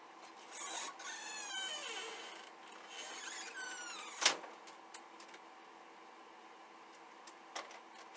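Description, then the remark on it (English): A printer whirs and churns mechanically while printing multiple copies, with sliding motor sweeps, small clicks and one sharp snap midway, with no one talking. “So, printed multiple copies, and then it didn't even print.”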